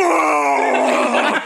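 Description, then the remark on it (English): A person vocally imitates a whale's mating call with one long, loud, drawn-out groaning moan, its rich, buzzy pitch wavering and sliding over about a second and a half. “Oh, that's god, the mating oh call.”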